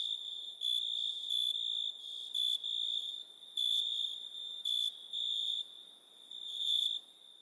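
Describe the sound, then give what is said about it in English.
High, shrill crickets chirping in a steady trill that pulses in short bursts, clear, with no voices or other sounds around them. “Nothing. Crickets.”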